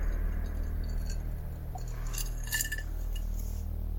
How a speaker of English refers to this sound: Excuse me while I sip my whiskey.